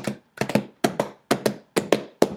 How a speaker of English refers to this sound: We didn't sound test the clapping. Oh, no. It's clip clapping. It is clip clapping.